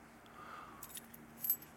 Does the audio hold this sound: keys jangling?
yes